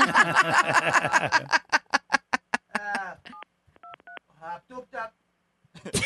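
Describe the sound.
A few short electronic keypad beeps, a phone being dialed to call 911, sound in quick succession after a burst of laughter and rhythmic vocal noises, with voices returning at the end.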